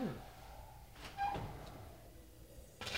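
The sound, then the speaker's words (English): A brief scrape as pitas slide onto the floor of an oven turned down to 450 degrees to emulate a brick oven, with a short metallic squeak, followed near the end by the oven door closing with a soft clunk, amid quiet background noise. “So here we go, sliding them on, closing the door.”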